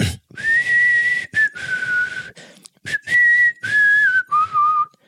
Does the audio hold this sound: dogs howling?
no